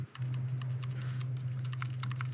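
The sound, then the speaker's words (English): Rapid, crisp clicks of a Drop ALT mechanical keyboard with Kailh Box White switches being typed on, keystrokes tumbling in a fast irregular rhythm, fairly loud over a steady low electrical hum, with no talking. “I think the keyboard I'm using right now, this drop alt has Kale Whites on it.”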